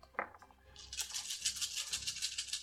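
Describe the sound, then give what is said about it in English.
A handful of six-sided dice (D6) rattles and clatters in a dense, rapid stream of sharp little clicks that keeps going for about two seconds after a single soft knock, with no one talking, rolled for necrotic damage during a tabletop role-playing game. “This is the most dice I've ever gotten to roll.”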